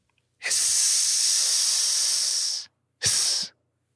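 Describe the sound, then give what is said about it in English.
A person imitates a snake's hiss: one long, loud, airy hiss lasting about two seconds, then a brief pause and a second, much shorter hiss. Both are bright and breathy, with no talking. “Hiss. Hiss? Rat, tail rattle?”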